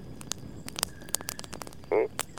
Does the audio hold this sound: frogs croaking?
yes